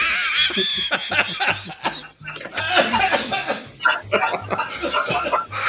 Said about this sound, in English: Oh, my hell. I just coughed up a lung. I was not expecting that.